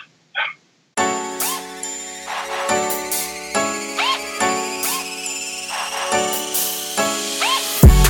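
A phone ringtone plays loud: a bright, chiming melodic phrase that repeats every second or so with a steady rhythm, after a brief faint blip at the start. No voices.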